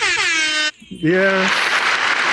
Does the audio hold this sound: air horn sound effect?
yes